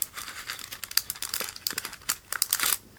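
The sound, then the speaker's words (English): Crinkling plastic or paper imitates a crackling campfire, with irregular bursts of sharp, bright pops and rustles over about three seconds, stopping abruptly at the end. “but the general idea is that we're sitting around a campfire telling tales of horror. Here's our campfire.”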